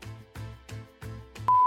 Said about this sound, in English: We deafened you. I sound okay. You make a noise. Beep beep beep. Oh yeah, you barely register.